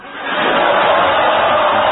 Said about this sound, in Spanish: Dice la palabra amistoso. Los de amistoso primero. Griten los amistosos.